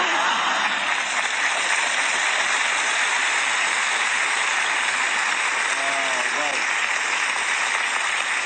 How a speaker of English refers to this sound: Quite a good cheer.